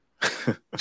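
A harsh, close-up cough bursts out in two quick rasping parts, followed after a brief pause by the start of another cough. No talking, just the coughing.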